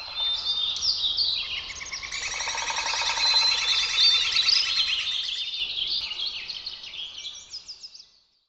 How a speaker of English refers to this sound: In these sounds, we learn that there are not just four seasons, but dozens or hundreds. Bird sounds reveal the polyrhythms of a living earth.